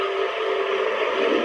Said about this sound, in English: Hissing sound.